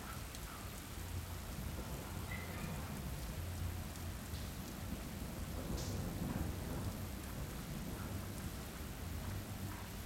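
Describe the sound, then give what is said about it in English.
Steady, dense rainfall hisses without a break while deep, rolling thunder rumbles low underneath throughout. No voices, just a constant, enveloping thunderstorm at even loudness. “Until next time, good night. Good storms.”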